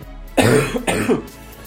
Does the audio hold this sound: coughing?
yes